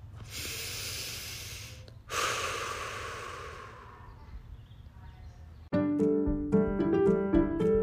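A long deep breath drawn in, then a slow airy exhale that fades out, followed by soft instrumental music starting up.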